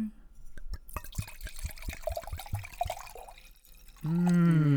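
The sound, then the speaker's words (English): Wine glugs out of an already half-drunk bottle of Carnivore wine in a quick run of rhythmic gurgles for a few seconds, then a voice starts talking near the end. “I'll pop the cork. It's already half drunk.”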